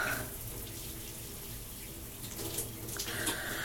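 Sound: shower water running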